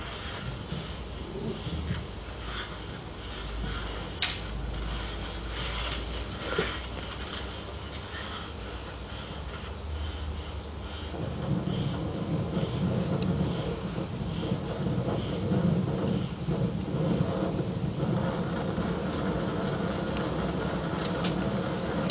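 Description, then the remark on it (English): Rapid, heavy breathing of a Sherpa at high altitude, recorded on his head cam, at about 60 to 70 breaths a minute, each breath a harsh, airy rush over a steady wind-like roar that grows louder partway through. No one speaks. “If you listen particularly, you can hear his respiratory rate, his breathing rate's going at about 60 or 70 breaths a minute.”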